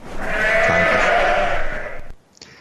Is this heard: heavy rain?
no